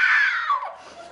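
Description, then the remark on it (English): A shrill, high-pitched screech from a voice imitating a screaming dragon, loud at first and then sliding downward in pitch before trailing off into a fainter rasp. “Scream dragons. Scream the dragons.”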